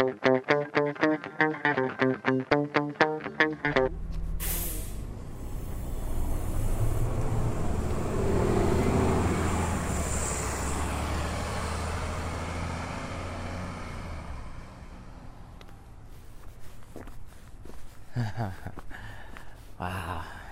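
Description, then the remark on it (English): A city bus in Vancouver rumbles loudly past at night amid steady street traffic noise, swelling and slowly fading, with brief talking at the beginning and near the end. “I'm off the bus, and it's just one of these amazing nights in Vancouver.”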